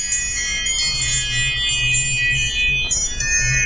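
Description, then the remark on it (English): Bright electronic notification chime tones ring out steadily, layered bell-like notes sustaining for several seconds with a soft low hum underneath and no talking. “Ooh, we've got the chimes.”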